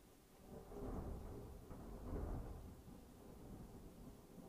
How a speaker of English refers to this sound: Confirmation, pure lightning, thunder coming right behind it.